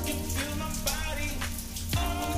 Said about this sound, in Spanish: Se escucha la lluvia, güey. Sí, se escucha. Es lo que tú decías, que algo tronaba y son las pinches gotas cayendo, güey.